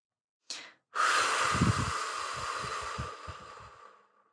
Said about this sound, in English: So let's take a moment to breathe, connect to ourselves.